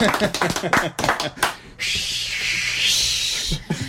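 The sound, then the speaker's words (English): Talking gives way to a sustained wash of crowd applause for a band on KHUM radio, lasting a couple of seconds, steady and fairly loud, before a voice returns. “Give them a hand. That crowd out there.”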